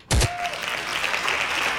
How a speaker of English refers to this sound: Hand clap. Hand claps again.